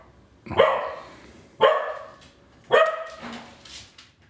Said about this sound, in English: My dog says hello.